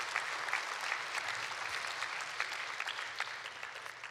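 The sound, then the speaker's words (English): An audience claps together in a steady, dense burst of applause to celebrate people accepting Jesus, the many hand claps blending into a continuous bright patter that holds at an even loudness throughout, with no voices standing out. “We can clap for that, yeah.”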